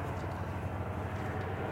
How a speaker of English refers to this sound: And then a helicopter flies overhead.